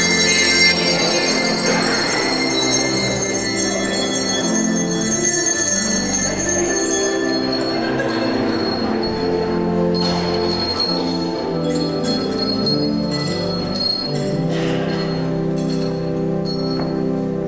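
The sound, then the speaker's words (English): A steady wash of handbells rings continuously, many bright overlapping tones clanging at once in an uneven, unsynchronized jangle, fairly loud, with no talking; children ring the handbells during a church service. “When you guys get a little bit older, you can be in the handbell choir.”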